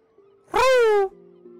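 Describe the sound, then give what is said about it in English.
A person imitates a pigeon with a single loud, nasal vocal call that dips slightly in pitch and lasts about half a second, set against a faint steady electronic hum. “No, that was a noise. Like, that was a pigeon.”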